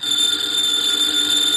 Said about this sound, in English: Ladies and gentlemen, the ringing of that phone bell means mystery, adventure.